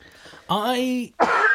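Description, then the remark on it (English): A loud voiced throat-clearing grunt, then after a short gap a harsh, breathy cough burst. Both are brief, with no talking alongside. “You have an opinion that should be obscured by coughing.”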